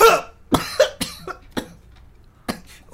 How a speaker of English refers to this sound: A couple of moments pass, and almost on cue, … starts coughing.